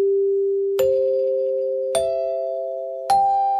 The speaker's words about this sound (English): Do affiliates cut away when they hear those chimes?